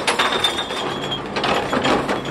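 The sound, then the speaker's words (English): A Chicago city recycling truck's mechanism grinds as a blue recycling cart is tipped in an alley, with dense clinking and clattering of glass and containers tumbling in and a thin whining tone running through the first half. “Yes, this truck picks up recycling.”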